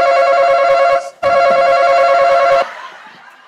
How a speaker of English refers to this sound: That shit scared the fuck out of me because they cut our buzzer off 2 weeks ago. We wasn't even supposed to get our buzzer back on yet. The buzzer been cut off.